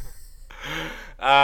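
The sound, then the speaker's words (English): A single yawn: a long, breathy intake of air that ends in a louder, voiced, drawn-out groan as the mouth opens wide. “Why would I talk when I'm recording podcasts, I find myself yawning, but I do not do that in any other area of conversation.”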